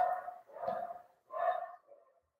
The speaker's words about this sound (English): Seems that the dog agrees with me, people. What the heck is she barking about?